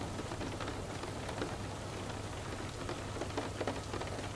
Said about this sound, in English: As you listen to the rain falling down onto various surfaces, the occasional roll of thunder and a gentle breeze begin to fill the scene.